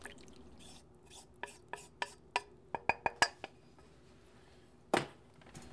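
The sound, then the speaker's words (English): A whisk clinks against a bowl while mixing hot cream poured over chocolate and butter, whisking until it all melts into one smooth mass: a quick run of light metallic taps, a pause, then one louder clink near the end. No one speaks. “Take a whisk and just whisk until all of that is melted into one mass.”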